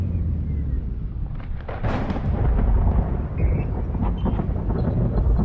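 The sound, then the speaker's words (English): Heavy thunder from a lightning storm rumbles continuously and loudly, with a sharper crack partway through before the deep roll carries on. No one speaks. “How could there be a lightning storm in space?”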